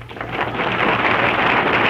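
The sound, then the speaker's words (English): A studio audience applauds steadily, a dense wash of many hands clapping that swells slightly in the first moments and then holds at an even, fairly loud level with no voices. “Why, Mary, I'm surprised you're not applauding.”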